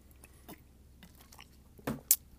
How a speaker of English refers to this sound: Just drinking some H2O, because water is good shit, man. It's good shit.